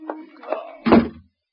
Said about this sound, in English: Got to get out. The front door. Open. Open!